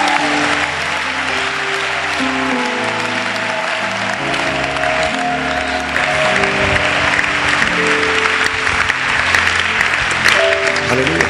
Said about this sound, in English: Is that the way you clap in this church?